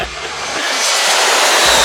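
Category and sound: vehicle, airplane passing overhead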